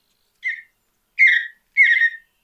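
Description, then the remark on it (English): A mountain bluebird sings three short, clear warbled phrases, the first brief and softer, the next two longer and louder, with a high, sweet whistled tone and no talking. “If you live or visit up into upper elevations, get up into some mountains and listen to that mountain bluebird, I always equate to what they say is more like a cheer, cheer, cheerful.”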